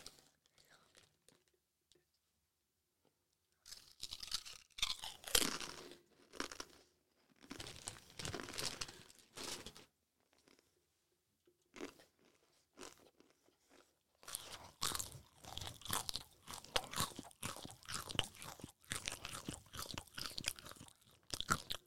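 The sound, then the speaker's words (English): Crunching of Disco salt and vinegar crisps being chewed, coming in repeated crisp bursts with short pauses after a few seconds of near silence, growing more continuous and steady toward the end. “And some Disco salt and vinegar.”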